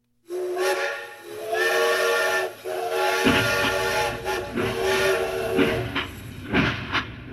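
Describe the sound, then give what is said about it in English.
A steam train's whistle sounds in long, loud, layered blasts over a constant hiss of escaping steam, with a low mechanical rumble rising partway through and no voices. “After appearing to walk every step from New York City to Laramie, Wyoming, it is believed that he started using the train at this point.”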